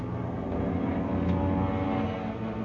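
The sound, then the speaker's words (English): A steady, dense engine drone holds for a few seconds, loud and continuous with a low throbbing hum, like propeller aircraft passing overhead. No voices. “Are planes. They must be ours.”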